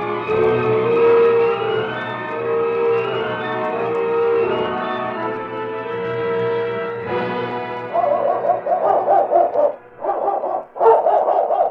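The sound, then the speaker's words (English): Watchdogs bark and bay loudly, starting with drawn-out howling calls that give way to rapid, overlapping bursts of barking near the end. No one speaks. “Hey, the dogs.”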